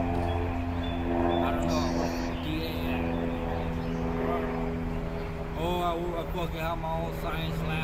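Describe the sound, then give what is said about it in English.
An airplane drones steadily overhead, a constant low engine hum running the whole time beneath people chatting. “I hear a plane.”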